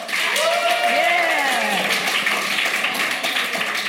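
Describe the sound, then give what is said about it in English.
An audience claps steadily for about four seconds to show they like avocado, a dense, even wash of hand claps, while a few voices whoop and call out over it. “By clapping, do you like avocado?”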